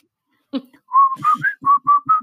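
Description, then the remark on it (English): A person whistles a short tune, about seven quick notes in a bouncy rhythm, slightly breathy and uneven, after a brief soft vocal sound at the start. “I can't whistle. I've been drinking eggnog.”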